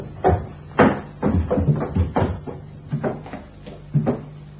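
A string of wooden clunks and rattles, like locked doors being tried and handles jiggled, comes in uneven bursts over a low steady hum, with no voices.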